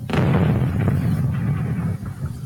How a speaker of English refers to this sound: No, man, take that explosion off. That is not explosion worthy.